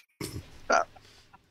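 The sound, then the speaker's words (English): A chicken gives a short, sharp cluck right after a dull thump, followed by a faint second cluck; brief, with no talking. “We can't kill a chicken.”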